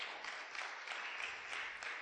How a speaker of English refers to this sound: Just give him another round of applause.